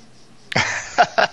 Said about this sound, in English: Sniffing your figures, dude. So this is a very, very Spinal Tap moment. You know, smell the glove. Smell the glove. Well, there you go. I just smelled the leather trousers there